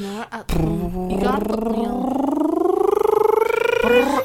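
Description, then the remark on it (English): A single long, drawn-out meow made by a human voice imitating a cat, rising steadily in pitch and wavering toward the end, loud, with a short vocal sound just before it. “You got the meow.”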